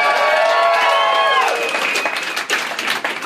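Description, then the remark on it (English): An audience at a live stage show bursts into loud, sustained clapping as the Leonard Maltin game is introduced, with whoops and cheers layered on top, the high cheering voices fading after a moment while the applause continues steadily. “What I love when you introduce Leonard Maltin game and people clap that much, that lets me know how many people know how good I am at this game.”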